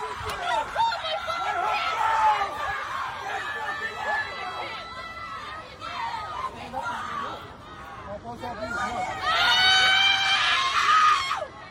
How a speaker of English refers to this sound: This is the professor getting arrested. Now listen closely because she starts screaming. Go ahead.